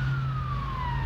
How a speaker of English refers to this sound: Sorry. I'm in the road, so there's cars. I don't know if that's an ambulance or it's the police. Yeah, I can't tell the difference because apparently, it's an ambulance actually. So let's just wait for it to pass.